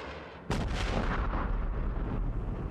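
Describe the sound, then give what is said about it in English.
A firework is shot off from a front porch at a low-hanging helicopter, going off with a sudden, loud blast, followed by a sustained crackling roar and low rumble that lingers for a couple of seconds. No one speaks. “the angry guy on his front porch, did shoot off a firework at the low-hanging helicopter.”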